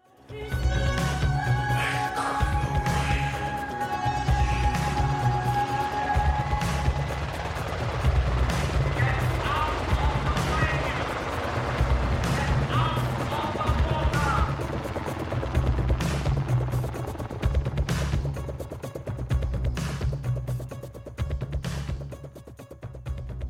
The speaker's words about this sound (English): But God, that helicopter, I don't know what it is about. Maybe it's what we associate with it. But that helicopter sound in both songs is so effective.